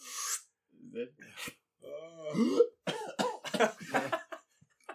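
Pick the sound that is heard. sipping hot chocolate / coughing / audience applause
coughing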